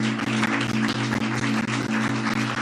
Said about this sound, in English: I want to honor the gift on your life. Can we give God a hand clap of praise for the gift of our psalmist this morning?